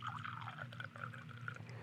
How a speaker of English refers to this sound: This is no logo, no branding, no label on the bottle. This is the barrel program. This is single barrel being poured.